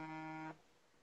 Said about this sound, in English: Whoa. Okay. I think we're getting the buzzer, guys.